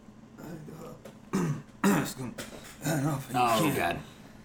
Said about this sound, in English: Oh, God. Can someone give this guy a cough drop?